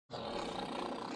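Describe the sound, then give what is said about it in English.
A toilet flushes with a sudden, loud rush of water that starts abruptly and holds as a steady, roaring wash of noise to the end, with no voices. “Flush. Three flushes. Not one, not two, but three.”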